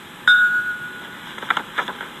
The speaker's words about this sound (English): A bell rang. School was over.